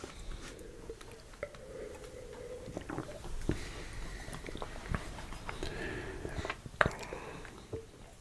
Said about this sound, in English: So trying to finish up the glass with that last sip.